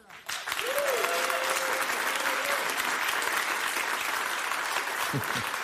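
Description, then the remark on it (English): An audience breaks into loud, sustained applause after a man speaks, a dense wash of clapping that swells within the first half-second and holds steady to the end, with a faint whistle or cheer early on. “This guy speaks and applause breaks.”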